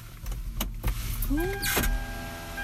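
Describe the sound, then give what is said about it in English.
A car engine idles with a low steady rumble while a power window motor whirs upward and shuts with a thump, followed by a short burst of noise inside the car. “Turn on the car, close the window.”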